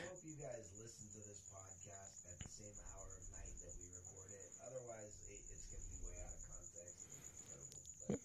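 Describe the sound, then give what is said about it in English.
Crickets chirp in a steady, high-pitched, unbroken trill for the whole stretch, fairly prominent, while voices talk over it in the foreground. “At first, I was like, oh man, there's gonna be crickets on the podcast.”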